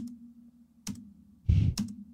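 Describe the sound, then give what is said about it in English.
A few slow, separate, fairly loud taps on a computer keyboard as a woman at a table enters information, with uneven pauses between keystrokes and a low hum underneath; no one speaks. “And she's typing, and she's typing like, you know, like this.”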